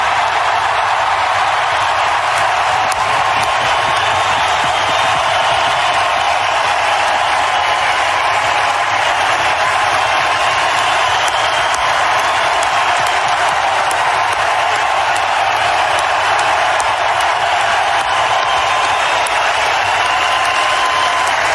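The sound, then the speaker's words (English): A large crowd at the United Center roars and applauds for Chelly at his jersey retirement, without letup for about twenty seconds, a loud, dense wash of clapping and cheering that holds steady throughout, with no speech over it. “Well, listen to those fans cheering, and that was Chelly during his induction.”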